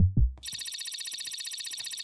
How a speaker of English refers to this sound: He had a subject who was having some symptoms, so he had to bleep me. Yeah, it is still exciting to be bleeped.